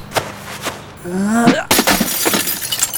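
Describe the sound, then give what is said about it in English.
The glass of a space window shatters in a loud, bright crash, followed by scattered tinkling fragments. Before it come a couple of dull knocks and a rising, strained vocal-like tone. “You can't break a space window by punching it.”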